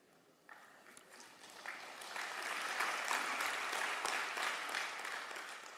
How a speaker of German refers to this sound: Nein, nein, nein, nicht klatschen. Das wird mir keinen Nobelpreis oder sowas einbringen.